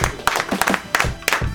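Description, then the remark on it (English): A few sharp hand claps of appreciation for the last song of the Shanty Top 10, in a steady, evenly spaced rhythm, fairly loud, with some low murmuring in the background between them. “This deserves its own little hand clap, its own little appreciation.”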